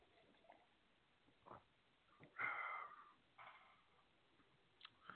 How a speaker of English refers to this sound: So give me a second, guys. Clear my throat here.